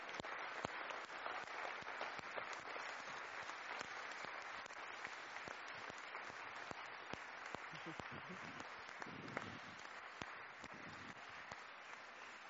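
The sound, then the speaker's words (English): A studio audience applauds steadily for about twelve seconds to welcome Simon Ward of London Fashion Week, a dense, even wash of many hands clapping with a few sharper individual claps standing out, and faint voices murmuring underneath. “Please give him a hand, a round of applause.”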